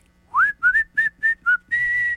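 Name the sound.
person whistling a tune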